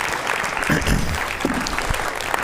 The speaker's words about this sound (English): And isn't the set wonderful? This, you know, we ought to give the staff a great big round of applause. It's pretty good.